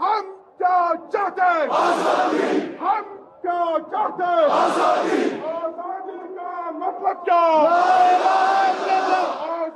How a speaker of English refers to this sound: Soon after Article 370 was revoked, protests erupted. First, large crowds of people living in Kashmir took to the streets to protest, saying they want Kashmir to be free and independent.